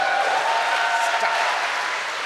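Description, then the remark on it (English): An audience applauds steadily, a dense wash of many hands clapping at an even, fairly loud level that holds throughout without letting up. “Thanks for the applause, everybody.”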